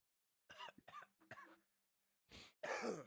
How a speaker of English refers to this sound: Cough loud.